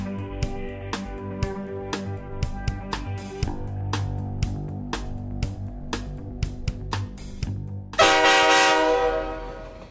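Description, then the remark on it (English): A 2-kilometre Canadian Pacific Railway freight train carrying grain, headed to Field, British Columbia, rolls past with a sustained, blaring horn over rhythmic clacking of wheels on rail joints, ending in a loud, harsh burst of hissing noise near the end. “February 2019, a 2 kilometer train containing grain is headed to Field, British Columbia.”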